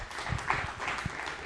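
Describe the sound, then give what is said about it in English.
A crowd applauds the volunteers, a dense patter of many hands clapping at once, steady and moderately loud throughout with no voices standing out. “But first, I want you to give our volunteers a round of applause.”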